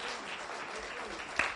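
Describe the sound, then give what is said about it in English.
An audience in a church claps together in a steady, dense wash of applause that holds at an even level throughout, with one sharper, louder clap near the end, giving a big Quarry Rock welcome. “Or we can start clapping.”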